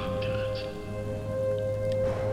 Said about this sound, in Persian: اولین باران پاییزی امروز باریدن گرفت